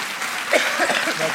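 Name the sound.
audience applause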